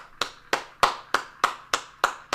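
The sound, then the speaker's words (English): A single person claps hands in a steady, even rhythm, about eight sharp, bright claps roughly a third of a second apart, each with a short ringing decay, and no voices. “Do I get a round of applause for that?”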